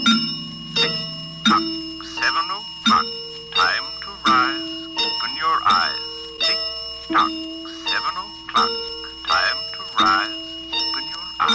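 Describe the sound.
A singing clock, one of the automatic devices in a house built for the year 2020, chimes in a steady series of bright, ringing strikes about every second and a half, with a warbling, voice-like melody weaving between the tones.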